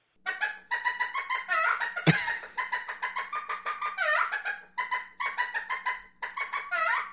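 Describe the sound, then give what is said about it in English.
A chicken call instrument played in quick, squawky bursts, imitating a hen's clucking in a steady, rapid rhythm for several seconds. It is fairly loud, with a sharp knock partway through and no talking. “You would have a chicken.”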